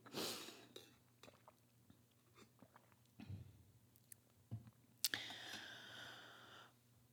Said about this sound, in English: So I'm going to take a sip of water, hydrate people. If you have a hydration device next to you.